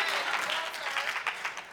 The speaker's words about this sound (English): Now, ladies, don't clap too hard. Don't clap too hard